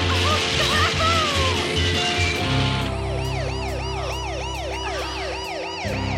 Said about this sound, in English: The car! Watch out for the car!